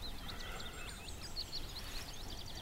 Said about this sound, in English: I'm standing next to a pond. Lots of waterfowl.